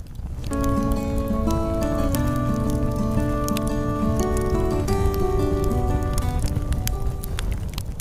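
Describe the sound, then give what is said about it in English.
A steady crackle of a campfire, dense irregular pops and snaps, runs beneath a sustained, gently shifting musical tune that plays throughout at an even volume. “Do I hear a campfire?”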